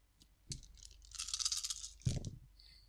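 dice rolling

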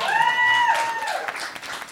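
crowd, small round of applause

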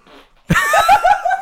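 human body sound, fart

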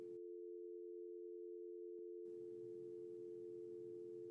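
signal or alarm, telephone line tone

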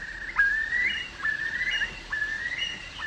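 bird, curlew call

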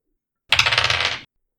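dice being rolled

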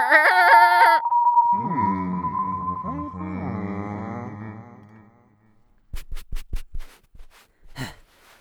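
animal, sheep bleating

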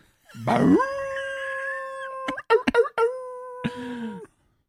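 animal, wolves howling

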